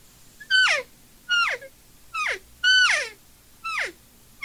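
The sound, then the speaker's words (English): Five evenly spaced, high-pitched mewing calls, each sliding quickly downward in pitch with a reedy, harmonic tone, like an elk cow call blown on a reed game call. No voices. “I do like the fact that he doesn't have the wide reed that Steve does or that Primos does, you know, and I kind of like a wider reed, but this is not a skinny reed, which I appreciate.”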